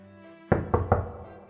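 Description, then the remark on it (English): Three firm knocks on a wooden door in quick succession, solid, each with a short resonant thud, over a faint steady background hum. “You knock on the door, and no one yells at you.”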